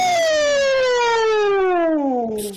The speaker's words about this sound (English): It was an alarm. That just blew everybody. Yeah, my ears hurt.